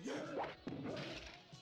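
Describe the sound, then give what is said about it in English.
Two sharp, loud slaps across a face land about half a second apart, each a crisp smack with a brief tonal swish around it, with no talking. “But I just bitch slapped him.”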